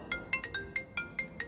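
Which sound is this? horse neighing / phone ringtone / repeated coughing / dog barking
phone ringtone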